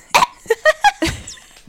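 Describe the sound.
A human voice imitates an animal call that blends a bark, a cough and a yap: five short, sharp bursts in quick succession, fairly loud, ending in a rougher, drawn-out cough.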